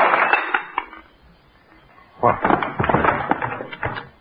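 A Canada Dry bottle smashes over a woman's head, knocking her out, with a sharp crash of breaking glass and clattering shards, then after a brief quiet gap a second, longer burst of glassy clinking and rattling.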